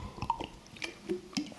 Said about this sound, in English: Drinking a glass of water, just like this. Sorry, I need a drink.